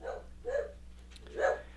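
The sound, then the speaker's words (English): A dog barks three times in a steady rhythm, short sharp woofs spaced about half a second apart, moderately loud, with no talking over them; the dog hears someone in front of the house. “And so the dog hears somebody.”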